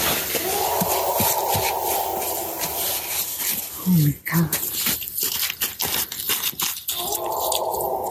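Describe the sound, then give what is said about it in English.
A drawn-out, eerie wailing cry of an unknown creature rises and fades over a crunching, rustling outdoor background in woods in Canada, recorded on a phone by a family out hunting, with a short sharp call in the middle and a person briefly exclaiming. “A viral video captures the screams of a mystery creature out in the woods.”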